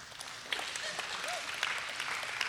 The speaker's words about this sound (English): Yeah, you can clap.